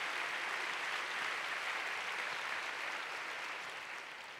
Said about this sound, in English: If you believe that, give the Lord a big clap. Hallelujah. Oh, you want to clap? Give the Lord a big clap.